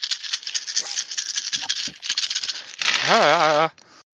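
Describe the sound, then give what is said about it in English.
Dice rattle and clatter steadily for nearly three seconds as they are rolled in a tabletop game, with four dice exploding, a dense, busy shaking sound, followed by a loud wavering, warbling tone that holds briefly and then cuts off. “Oh shit, that was a really good roll, and I used edge. Oh boy. So, 4 dice exploded.”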